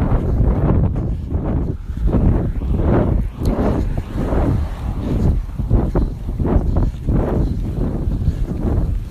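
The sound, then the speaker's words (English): Gusty wind buffets the microphone outdoors at 4th Street Park, away from traffic, a loud low rumbling roar that surges and dips in repeated waves, with no voices, just constant blustery noise. “Alright, away from traffic, but not away from the wind.”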